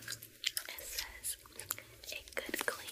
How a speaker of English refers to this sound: There's gum chewing.